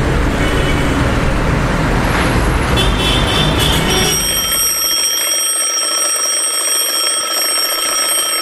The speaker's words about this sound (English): There goes that old alarm clock once again.